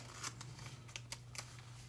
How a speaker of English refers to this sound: turn the page. Hold on.